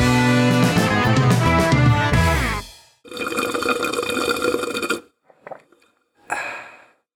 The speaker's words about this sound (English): Yes, and whoever has the snoring pug, you don't have to disturb them anymore.